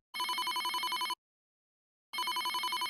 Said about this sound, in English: Suddenly, Joni's cell phone rings.